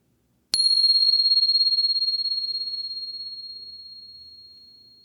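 A single bell is struck once, sharp at first, then sustains a clear, steady high ring that slowly fades over several seconds with a gentle shimmer. No one speaks.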